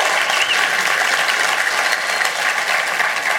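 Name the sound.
audience applause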